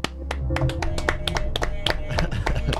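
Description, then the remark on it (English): A round of applause plays as a sound effect: a run of sharp, irregular claps with steady hum and tonal bed underneath, fairly loud throughout with no voices. “Do you have the round of applause?”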